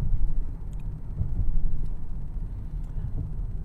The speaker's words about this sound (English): And as I'm recording this, yes, I'm in my car. So sue me.